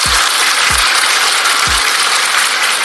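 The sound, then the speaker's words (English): Steady applause, a dense crackling wash of many hands clapping, fills the whole clip at a fairly loud level, with three deep low thumps underneath near the start. “Give yourself a round of applause because you woke up this morning.”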